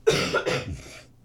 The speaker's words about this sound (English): And so now that my throat is completely drying out and I desperately need a cough, we can do a bonus section. Hold on.